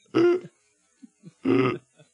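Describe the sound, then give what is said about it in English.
A person imitates someone else's gasping, air-sucking sound twice: two loud, harsh vocal bursts about a second apart, with faint small breaths and clicks in the pause between them. “It sounds like a gasp.”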